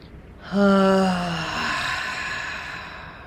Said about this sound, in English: Breathing in, and as you breathe out, the ha sound.